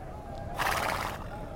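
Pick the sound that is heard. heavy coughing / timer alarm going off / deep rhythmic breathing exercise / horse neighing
horse neighing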